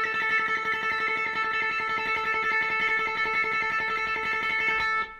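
An electric guitar tremolo-picks a single sustained note, a rapid, even flurry of attacks held steadily for about five seconds before cutting off. It is played alone, with no voices.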